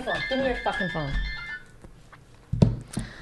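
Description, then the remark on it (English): A phone ringtone for an incoming call plays a bright electronic melody for about a second and a half while people talk over it, then cuts off as the call is declined, followed by a brief louder burst of voices. “Give me your fucking phone. That's what I'm talking about. How do I decline that?”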